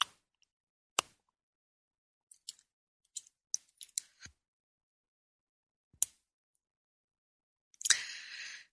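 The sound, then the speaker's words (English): Someone sipping espresso: a few sharp, isolated clinks and a cluster of small soft clicks, then a brief breathy, hissing slurp at the end. No one speaks. “Oh, I need another sip of my espresso here.”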